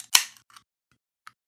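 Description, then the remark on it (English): A beer bottle cap pops off with a sharp, hissing snap that fades quickly, followed by a few faint, brief clicks and a soft sip. No voices are heard. “Well, snap, crackle, pop, slurp, sip.”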